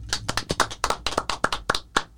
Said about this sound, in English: So claps for her.